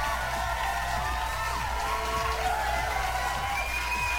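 audience applause and cheering

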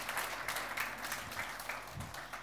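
audience applause

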